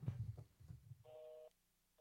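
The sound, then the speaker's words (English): A telephone ringback tone plays over a speakerphone: one steady, buzzy half-second ring burst, preceded by muffled low thumps and rumble, then near silence. “Oh, it's still ringing off the hook.”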